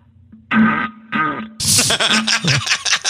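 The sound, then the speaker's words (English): Three loud, sputtering wet fart noises echoing in a toilet bowl: two short bursts followed by a longer, bubbling, splattering one with a hollow, echoing quality. “That's less of a fart and more of a shart. That's actually shitting.”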